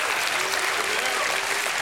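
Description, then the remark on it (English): Steady, dense applause from a church audience giving a hand clap of praise, loud and continuous, with a faint voice rising underneath the wash of hand claps. “If you believe me, give Him a hand clap and a shout of praise.”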